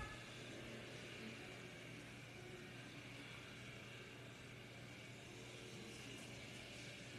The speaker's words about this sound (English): Oh, he's doing a burnout.